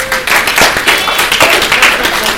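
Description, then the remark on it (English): A small group claps steadily for a couple of seconds, a dense, busy patter of many hands at moderate loudness, with no one speaking over it. “Everyone clap for Ben.”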